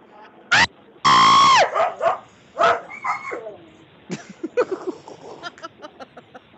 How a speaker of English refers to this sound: My dogs screamed more than I did.